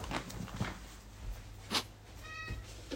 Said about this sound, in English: And, right, hang on. I'm just going to get rid of that cat. Excuse me.